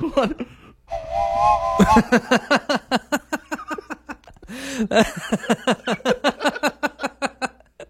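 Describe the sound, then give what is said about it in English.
A mournful real train whistle sounds for about a second with a steady, slightly wavering tone, followed by a rhythmic chugging pulse and a brief, falling whistle partway through. “Also, in sad news, is that a sad train whistle?”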